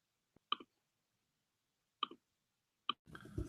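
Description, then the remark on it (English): A few sharp clicks and knocks come at uneven intervals as a microphone is adjusted, followed by a brief burst of rustling handling noise at the end. “Let's adjust this microphone, however.”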